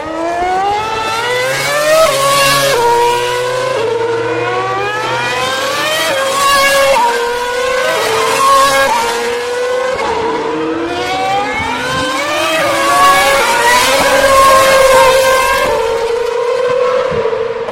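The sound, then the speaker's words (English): Several racing cars accelerate hard out of a corner, right on top of each other, their engines screaming upward in pitch through quick gear changes, the loud roar swelling in two big waves as the pack passes. “All cars are going to be flying in formation, aren't they?”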